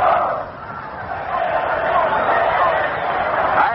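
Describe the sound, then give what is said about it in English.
A crowd at Yankee Stadium gives an Army cheer during a time-out at the Army–Notre Dame football game, a dense, continuous roar of many voices, dipping briefly early on and then swelling and holding loud. The sound is muffled and somewhat tinny, with no clear speech. “We're just about to go down there to pick up an Army cheer”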